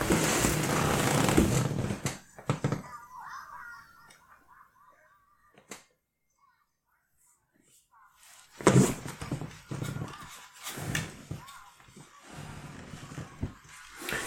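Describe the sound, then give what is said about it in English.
Rough, snorting pig-like creature grunts and squeals come in loud bursts, first at the start, then again after a stretch of near silence, growling on in uneven spurts. “Ugh, that pig. That pig is pissing me right off.”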